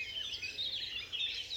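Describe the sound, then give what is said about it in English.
A dense dawn chorus of many birds singing at once, overlapping chirps and trills forming a continuous, bright wash of song, with no voices. “I'm talking about the dawn chorus.”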